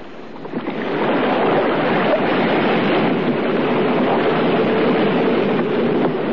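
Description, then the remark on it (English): A small rowing boat is taken out through a passage into the open sea, with steady rushing water and surf swelling in after a second and holding loud. No voices. “And they steered for the passage into the open sea.”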